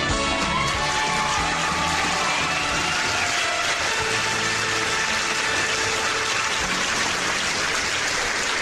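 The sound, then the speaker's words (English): A crowd cheers and applauds for the hosts of the show The Bible Live in a steady, dense roar that holds at an even loudness for several seconds, with faint higher voices threaded through and no one speaking. “Listen to all that cheering for us.”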